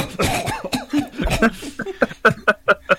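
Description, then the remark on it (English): A voice mimics a strangled, squeaky attempt at a scream that cuts out and turns into a quick run of short, rhythmic coughs, fairly loud, with no other talking. “Or like, I'll scream and partially squeak, and then the voice goes, and then the coughing starts,”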